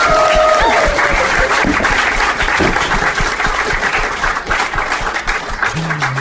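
A crowd claps loudly and steadily throughout, a dense wash of applause with a few brief tonal sounds and some faint voices underneath.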